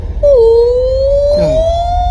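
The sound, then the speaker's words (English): A voice imitates whale song, as in the film Finding Nemo, with one long, loud, drawn-out moan that dips low, then slowly climbs in pitch for about two seconds, with a brief rough wobble partway through. “Didn't that sound a little orca-ish?”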